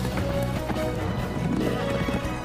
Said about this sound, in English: That's horse.